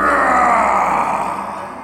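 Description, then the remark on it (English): A loud, guttural dragon roar holds steady for nearly two seconds, rough and rasping with a deep growling core, then slowly tapers off at the end. “I mean, those roars sound so angry, so furious, so...”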